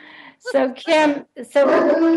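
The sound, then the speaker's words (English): A voice imitates a dog, giving a couple of short, loud barks followed by a drawn-out, wavering howl, with nothing else in the background. “A little, and a dog barking in the background.”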